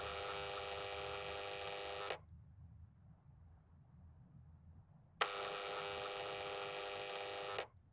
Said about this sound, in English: There's a shiny metal chrome door with a printed notice that reads School Gate 1. Ring buzzer for entry. Have your fingerprint ID ready. Overlooking the door is a CCTV camera. Marcus walks to the door, takes a breath and rings the buzzer.